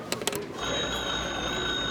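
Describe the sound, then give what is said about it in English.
A few quick mechanical clicks, then a steady, high-pitched ring from a hotel's wall telephone sounding continuously as a call is placed through the operator to the general store in Lyons, with no voices. “May I use the hotel's phone? Certainly. It's over there on the wall.”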